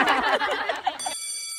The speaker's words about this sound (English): Well, that's the bell.